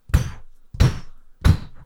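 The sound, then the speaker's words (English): Three heavy, evenly spaced knocks from a golden lion's-head door knocker on double French-style doors, each a deep solid thud with a brief metallic ring that fades quickly. No one speaks. “And they make, when you knock on them, it's not like a big echoey knock, uh-huh.”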